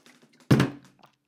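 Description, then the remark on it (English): Someone drinking water: a few soft, faint handling ticks, then a single dull thunk like a bottle or cup being set down, fading quickly. No talking. “Oh my gosh, let me drink some water.”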